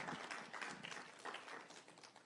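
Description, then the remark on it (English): A church crowd applauds steadily for a couple of seconds, a dense wash of many hands clapping at once with no voices. “And so, come on, you can clap for that again.”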